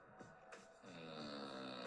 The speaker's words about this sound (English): I don't know if you guys figured out what that is. That's a lady. It took me a second to figure out what's going on there. That's a lady snoring.